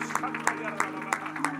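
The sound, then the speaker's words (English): An audience claps hands together in praise of the Lord in a steady, unison rhythm, about three claps per second, over sustained musical tones and indistinct voices. “Would you give the Lord a great hand clap of praise today?”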